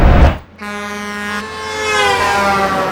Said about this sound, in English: Those rude drivers banging their horns jolted me off the brain train and right back to the bus stop.